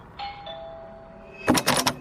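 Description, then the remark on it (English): A doorbell at the front door of a house chimes with a clear ringing tone that lingers and slowly fades, followed by a few quick, louder rattling knocks near the end. No one speaks. “I'm standing in front of the door, ringing the doorbell.”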